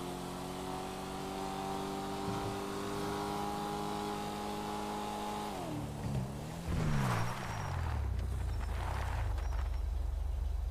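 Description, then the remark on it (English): A video game car engine on an online game server drones at a steady pitch, then winds down as it slows, giving way to a low rumbling idle with hissy noise. No one speaks. “Let's despawn this car before I leave the server.”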